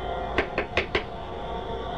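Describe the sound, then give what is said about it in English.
Four sharp knocks on a door in quick, slightly uneven succession, fairly loud against a quiet background hum. “Who knocks?”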